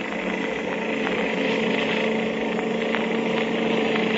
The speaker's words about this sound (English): I'll have to step on it. Here we go. Now, this motorcycle can certainly travel.